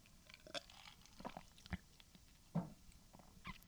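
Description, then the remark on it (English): Someone sipping coffee, with a handful of soft, irregular slurps and wet mouth clicks spread across a few seconds, quiet and with no talking. “So, all right, guys, I need another sip of coffee and then we're going to get into my takeaways.”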